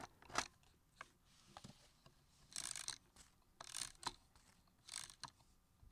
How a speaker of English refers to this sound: The sound of the key wound mechanism may be familiar, like an alarm clock.